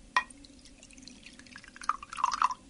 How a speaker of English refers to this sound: Yes, we've got some bicarbonate of soda over here. We've put it into a glass full of water so that we can put mixed in more easily. I swirl that round a bit and tip that into the glass.